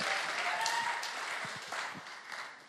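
Steady audience applause, a dense wash of many hands clapping at a moderate level, continuing evenly for a few seconds before easing slightly at the end.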